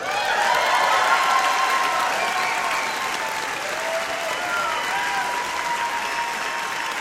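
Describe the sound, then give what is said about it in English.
A LiveWire Radio audience in Portland breaks into loud, sustained applause with scattered cheers and whoops after comedian W. Kamau Bell's set, a dense wash of clapping that holds steady for the full seven seconds with no one speaking. “Excited, excited white people.”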